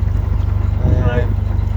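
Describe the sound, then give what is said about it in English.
A canal boat putters slowly along at about 1 mile per hour, heading towards Beeston, its engine giving a steady, low rhythmic chug, with a brief murmur of voice partway through. “We're ambling along a nice leisurely, probably about 1 mile per hour.”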